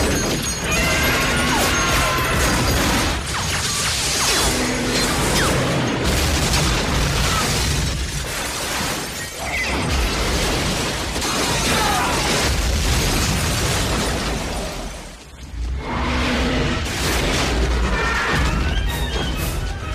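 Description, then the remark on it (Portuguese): Continuous heavy weapons fire mixed with booming explosions as troops fire at will on a sergeant's order, a dense, loud barrage of bursts and blasts that barely lets up, briefly dipping near the end before resuming. “Sargento, atire à vontade. Certo, fogo! Fogo! Fogo!”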